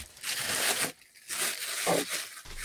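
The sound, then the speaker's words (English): Blue gift wrapping paper being torn open: three rough, crackly bursts of ripping and crinkling, separated by short pauses, with no voices. “Yeah, let's open them.”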